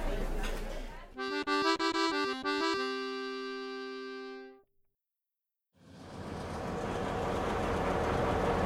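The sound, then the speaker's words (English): The New Orleans-bound Sunset Limited passenger train at a station: rumbling noise, then rapid clanking under a loud, sustained multi-tone horn blast that fades to a brief silence before the heavy, steady train rumble returns. “All aboard. New Orleans bound Sunset Limited. All aboard.”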